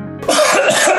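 A loud cough bursts out after a brief tonal lead-in, a harsh throat-clearing hack that rasps on for most of a second, from a cough that had been held back for about an hour.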